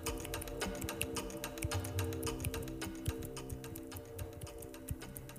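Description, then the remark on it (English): A clock ticks steadily and quickly during a timed challenge, over a continuous droning, music-like background bed. The sharp ticks repeat at an even pace throughout, with no one speaking. “No, those ones did not count because the clock just stopped”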